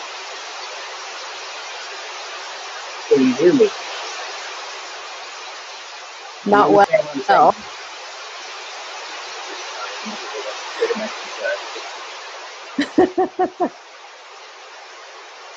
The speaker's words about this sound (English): Can you hear the rain on the roof? Yeah. That is so loud.